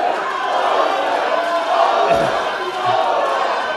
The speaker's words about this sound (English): If you could hold your applause just for one moment, guys, just for one moment.